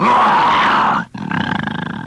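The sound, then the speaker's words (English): A man imitates a bear's growl with his voice, as the bear that guards Mr. Benny's vault: a loud, rough roar for about a second, a brief break, then a lower, throaty rumbling growl with a pulsing rhythm. “He says, can you growl like a bear?”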